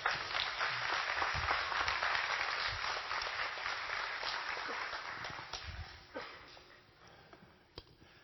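A crowd applauds warmly as a woman is invited up to share her story, dense overlapping clapping that starts full and gradually thins and fades toward the end, with a few isolated claps lingering.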